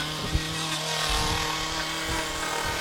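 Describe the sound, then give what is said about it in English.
A chainsaw runs steadily as it carves wood outside a carver's home and shop in Rhinelander, working on a carving for a roof peak. Its buzzing two-stroke engine holds a constant droning pitch, with a few brief low thumps as it cuts into the wood. “Nathan Nuskovich's paintbrush is a chainsaw.”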